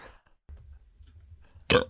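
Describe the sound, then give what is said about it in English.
A low rumbling burp into the microphone, building for about a second before ending in a loud, sharp burst. There's no talking. “… yeah, you burped are. Into the mic.”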